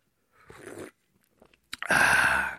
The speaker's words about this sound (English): I'm just going to have a sip of coffee because I'm tired.